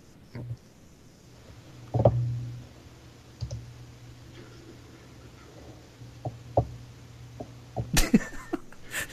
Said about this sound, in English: What, did you just burp? What was that?